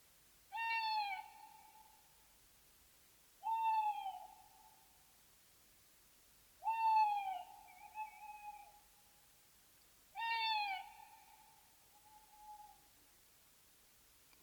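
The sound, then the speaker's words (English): An owl hoots four times in a slow, steady sequence, each call a clear, wavering note of a second or two with a short pause between. Distinct, with no voices. “What do owls mean to you?”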